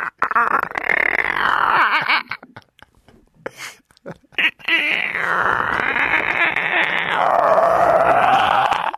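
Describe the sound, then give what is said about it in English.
A person uses their voice to imitate their stomach gurgling after eating cereal, making a long rumbling, bubbling noise, pausing briefly, then continuing with a second drawn-out, wavering gurgle, loud. “It sounds like I'm farting in me.”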